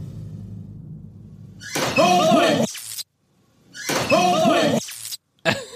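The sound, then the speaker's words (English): A loud, crackling lightning sound effect bursts out over a door slam, plays a second time after a short silence, then starts a third time at the end, following a low rumbling hum. “Why do they have a lightning noise?”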